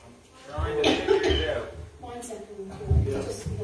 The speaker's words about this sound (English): Sorry about that. Coughing.